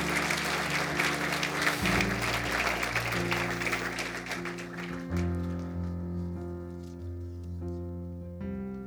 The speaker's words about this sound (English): Let's give the Lord a big, big, big hand clap all around the house.